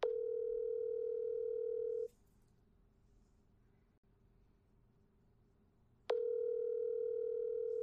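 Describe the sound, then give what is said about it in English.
A steady telephone tone during a phone call hums for about two seconds, cuts out for a four-second gap of quiet line hiss, then returns just as loud and clear, with no voices. “And really quick, here is some of that phone call that we had.”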